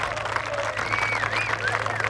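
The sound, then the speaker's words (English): A large outdoor golf crowd cheers and applauds in a dense, steady roar, growing louder as the ball nears the flag on the green at a par five, with a few high whistles rising out of the noise and a low hum underneath. “And the closer the ball got to the flag, as louder the crowds became.”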